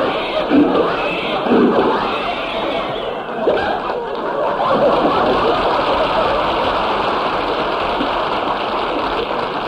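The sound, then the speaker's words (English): A voice imitates a car engine sputtering and coughing as it fails to start, a continuous run of rough, wheezing bursts lasting about ten seconds, with chuckling laughter mixed in. “Rochester, what's wrong with the motor?”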